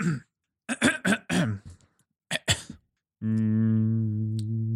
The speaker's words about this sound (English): Yeah, sorry, I literally had something in my throat and I was trying not to cough and splutter everywhere.